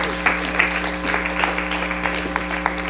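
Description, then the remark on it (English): A church audience claps steadily during a service, a dense patter of many hands that holds at moderate loudness throughout, with a low steady hum running underneath. “Come on, give him a round of applause.”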